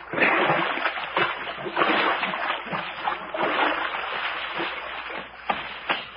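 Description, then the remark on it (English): Continuous wet splashing and sloshing of feet wading through muddy creek water along the creek edge at twilight, with repeated heavier splats at an uneven walking pace, moderately loud throughout. “Oh, boy, it feels good to get my toes out of this mush.”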